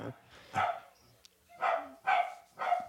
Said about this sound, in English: I imagine you can hear barking dogs in the background. Yeah, they sound excited. So my girlfriend just came home, so they'll die down in a second, I think.